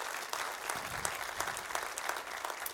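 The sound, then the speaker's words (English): A church audience breaks into steady, dense applause at the announcement of a new youth pastor, many hands clapping together in a continuous crackle with scattered louder claps, sustained at an even level throughout without any speech. “And I'm really, really, come on, you can cheer for that.”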